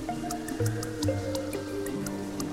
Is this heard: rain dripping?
yes